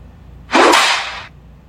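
A single whip crack sound effect: a sharp, loud snap that breaks into a bright, hissing burst of noise and fades out within about a second, with no talking.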